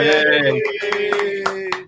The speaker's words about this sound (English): That doesn't mean you have the clap. No. Or some people call it the round of applause, but you don't have any of that, and we're not insinuating that.